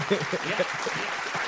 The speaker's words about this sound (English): So wifey mailed off the application, and lo and behold, in the mail, the GED showed up. Let's clap that up. Let's clap that up.